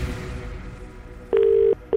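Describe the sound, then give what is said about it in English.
A loud, steady telephone ringing tone heard on an outgoing call placed by a radio presenter to a contest entrant: one burst lasting under half a second, then a short pause before the next begins, with a low murmur beforehand. “One ring.”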